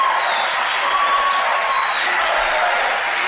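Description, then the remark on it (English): A large crowd at a political rally ahead of the November 5th, 2024 election cheers and applauds in a dense, steady roar, with scattered whistles cutting through the wash of clapping and shouting, loud and continuous throughout. “Hear that crowd?”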